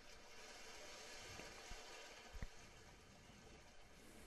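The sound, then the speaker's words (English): A steady, soft wash of ocean waves rolls on continuously in the background, with a couple of faint low thumps breaking through the hiss, at night under a full moon with misty rain. No one speaks. “I know the waves are so good to hear in the background.”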